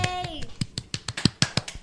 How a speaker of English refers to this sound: Don't clap for that. That's mean.